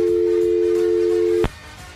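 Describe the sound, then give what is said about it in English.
A steady, mid-pitched electronic telephone tone rings out unbroken for about a second and a half, then stops abruptly with a sharp click, leaving faint line hiss, as an incoming call from Joe Exotic to the Bubba the Love Sponge Show is picked up. “Let me get to him real fast so it doesn't ring anymore.”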